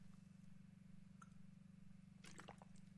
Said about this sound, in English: As I take a swig of water